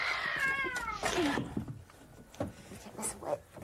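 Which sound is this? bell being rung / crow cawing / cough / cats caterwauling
cats caterwauling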